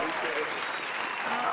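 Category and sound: crowd, round of applause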